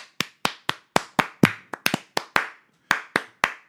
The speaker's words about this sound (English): I'm going to stop clapping when you're not pointing at me anymore.